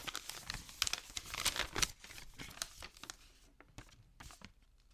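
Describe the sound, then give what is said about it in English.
Paper being unfolded and crinkled, a dense burst of crackling rustles for about two seconds, then sparser, softer crinkles and occasional sharp ticks as the handling slows. “Let me just open it up.”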